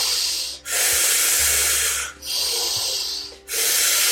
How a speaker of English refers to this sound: In and out, and in and out, and up and down. Keep going, keep breathing. About 15 more rounds of the active breath in the second round before we go into our second breath hold. Breathing in and breathing out.